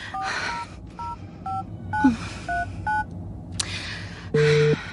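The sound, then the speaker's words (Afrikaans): A quick series of short mobile phone keypad tones beeping one after another at an even pace, followed by a longer electronic ring tone, all over a low background hum, as a woman at a train station dials on her cellphone. “Waar is my selfoon tog?”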